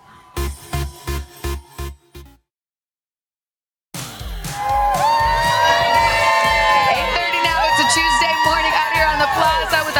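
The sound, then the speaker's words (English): A studio crowd on the Today show set cheers and shouts loudly and steadily, many voices whooping together, after a few rhythmic thumping beats and a brief silence at the start. “Guys, we got a great crowd out here.”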